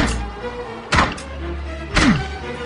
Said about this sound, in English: Mein Lederhosen! Who could that be knocking at my door?